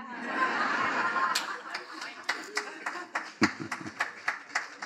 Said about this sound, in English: Stop. I can hear that sarcastic edge on that clap.